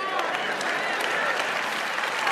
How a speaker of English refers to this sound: But here's the deal. If you clap on the on beat and your neighbor claps on the off beat, every beat is covered.